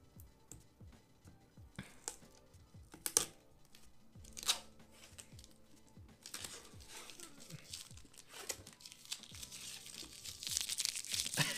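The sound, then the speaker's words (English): Crinkling and ripping of plastic product packaging as it is torn open during an unboxing, in repeated sharp bursts that grow denser and louder toward the end, with faint voices murmuring underneath. “let's open this. Unboxing.”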